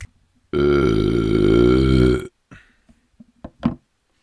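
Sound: loud belch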